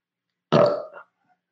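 A single loud, low, gravelly burp lasting about half a second, starting abruptly and trailing off with a short rumbling tail, with silence before and after.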